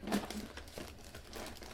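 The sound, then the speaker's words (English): Paper wrapping around an All About Reading curriculum box crinkles and rustles in a quick run of crisp, irregular bursts as it is crumpled and torn, with no voices. “We have something wrapped in paper.”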